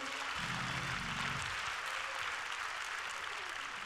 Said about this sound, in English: If you're glad about it, clap your hands.